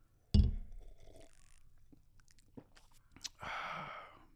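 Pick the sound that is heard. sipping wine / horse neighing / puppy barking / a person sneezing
sipping wine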